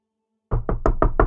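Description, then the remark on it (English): Loud, heavy knocking on a door: five rapid, evenly spaced thuds that boom after a moment of silence, with no voices present. “But this large banging knocking comes to the door.”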